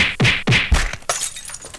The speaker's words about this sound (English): Okay, hey, that punching sound effect is going to work right now as we are going to use it for the segment